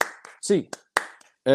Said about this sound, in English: As per always, get those hands up, Bruins fans. 8 clap time, baby. And 1, 2, 3, 4, 5, 6, 7, 8.